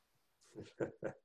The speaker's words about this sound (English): Sorry, I let my dog in. He was going to be a little loud.